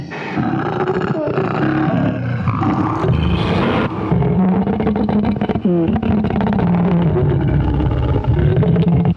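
A loud, sustained roaring scream from an unidentified creature, raw and harmonic, with wavering pitch that rises and dips in long drawn-out cries lasting the whole stretch, no voices alongside.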